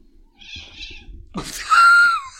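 A female cat, lifted by her tail and dragged out of the way, lets out a loud, drawn-out meow following a brief rustle and a short high chirp. No one speaks.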